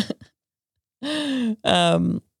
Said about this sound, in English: just the biggest yawn of her life. It's 2:30 in the afternoon. I'm exhausted.